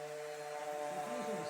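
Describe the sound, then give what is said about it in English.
A power sander, used by a young girl in a workshop, runs steadily, its motor giving a constant buzzing whine layered over gritty, rasping noise, holding at an even loudness throughout without any pauses. “So she goes with the power sander.”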